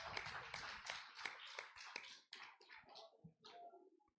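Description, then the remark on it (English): A group of people gives a hand clap of praise, a lively burst of applause, the dense claps thinning out toward the end as the clapping trails off. “One more hand clap of praise.”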